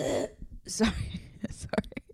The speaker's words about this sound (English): Sorry. I just had to clear my throat.